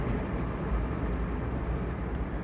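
A steady, heavy rumble of trains rolling past on Lake Street on an evening during the COVID-19 pandemic, with the streets deserted; continuous, with a deep low-end roar and no voices or other sounds breaking through.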